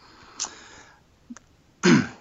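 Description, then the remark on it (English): A man clears his throat: a short rasp, a brief pause with a small click, then a louder, rougher guttural clearing at the end. “I'm sorry to clear my throat there.”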